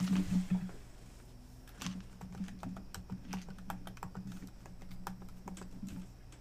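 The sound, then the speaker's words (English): Rapid typing of a complicated password on a computer keyboard, a steady run of crisp key clicks with uneven rhythm over a low background hum, no voices. “Can they hear that typing shit?”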